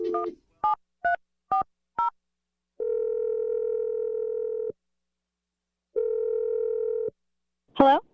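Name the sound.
telephone dialing and ringing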